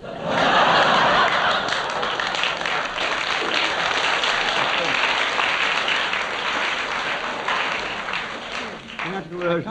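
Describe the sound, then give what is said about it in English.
An audience claps loudly and steadily for several seconds, a woman in the front row wincing as she claps, mixed with a burst of chuckling laughter, before a voice begins to speak as the applause fades. “Lady in the front row winced and clapped at the same time.”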